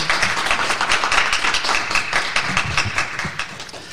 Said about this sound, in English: Thank you all so much for being with us. A round of applause for our guests, please.